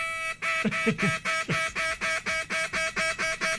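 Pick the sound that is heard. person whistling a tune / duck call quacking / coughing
duck call quacking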